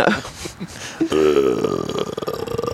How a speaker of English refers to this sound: Oh, the burp. Did you muffle a burp?